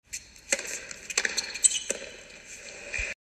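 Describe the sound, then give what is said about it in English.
Three sharp tennis ball strikes from a Zverev–Bublik match land about evenly spaced, the last a dull thud as Zverev's shot at Bublik's feet ricochets off Bublik's racket at the net and falls into the net, over a steady bright background wash; no one speaks. “As Bublik comes to the net and Zverev hits one of his missiles right at his feet, and you'll hear the thud as the point ricochets off his racket and falls helplessly into the net.”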